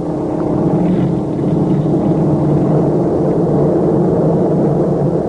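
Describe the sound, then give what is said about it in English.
A steady, loud drone of an aircraft's own engines in flight, alone in the sky, a dense low rumble with a faint harmonic hum holding constant throughout, with no voices or other sounds. “Suddenly, there was nothing but the sound of our own engines.”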